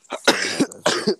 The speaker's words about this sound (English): Coughing boy.